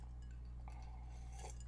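Drinking glasses clink together in a toast, a light ringing tap followed by a second fainter clink, quiet, over a low steady hum, with no one talking.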